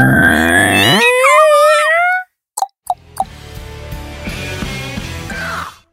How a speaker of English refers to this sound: Door opening sound effect.